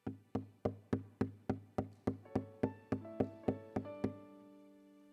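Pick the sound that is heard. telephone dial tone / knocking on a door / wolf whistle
knocking on a door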